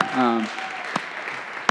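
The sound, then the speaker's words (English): An audience claps for God in a steady, dense patter of applause for the people who have given their hearts to Jesus. It follows a brief voiced sound and continues evenly to the end, with a couple of sharper claps standing out. “But let's give God a clap for that, of people who have given their hearts to Jesus.”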